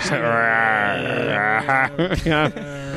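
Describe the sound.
A voice imitates the deafening growl a giant mosquito makes as it tries to take off: a long, droning, groaning hum that breaks into a few choppy grunting bursts, fairly loud throughout.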